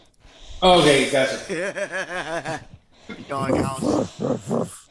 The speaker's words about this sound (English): Oh, that a dog? Good Lord, that sounds weird. That actually sounded real. I hear a darn dog outside our backyard. Well, actually, not our backyard, but the back.